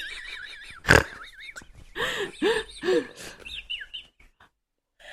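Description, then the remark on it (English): A person imitates a panicking pig, letting out a run of shrill, wavering squeals and several sharp arched shrieks, loud, then trailing off into brief high chirps. “Have you never heard a panicking pig? It's a horrible name, a horrible sound.”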